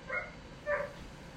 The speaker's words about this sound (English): My dog's barking. Hold on. Like I said, being real, I had to let my dog in because he was outside.